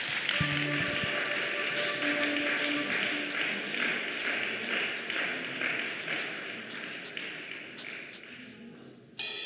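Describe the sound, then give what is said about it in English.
A church audience gives a round of applause for God, steady, dense clapping that holds at an even level for several seconds, with a few low tonal notes sounding faintly underneath at the start. “Can we just put a round of applause for God?”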